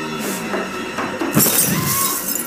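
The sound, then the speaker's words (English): A few light taps of a little ball bouncing lead into a sharp crash of breaking glass as it hits a light, followed by a second of bright tinkling shards. Fairly loud, with no voices. “That was the noise of a little ball bouncing into the light.”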